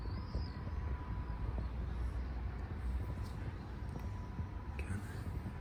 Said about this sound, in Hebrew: הנה המטוס.